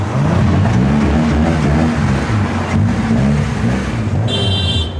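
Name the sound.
car engine revving loudly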